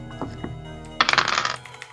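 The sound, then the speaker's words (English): Real dice clatter and tumble across a hard tabletop in a quick burst of bright rattling clicks, after a brief quiet lead-in with faint knocks, then settle to a stop; the roll totals 11. “Come on, real dice.”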